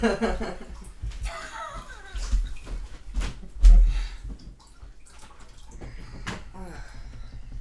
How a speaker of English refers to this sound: Before my turn, I want to turn off our little cat water thing, because that's been distracting me. I'm not sure if it's getting picked up on the mic.